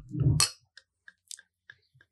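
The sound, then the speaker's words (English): A sparkling wine bottle pops open with a sharp burst and a brief gushing hiss, followed by several faint, scattered clinks and small fizzy ticks as it settles. “Pop it. Oof. Bubbles are always a good idea.”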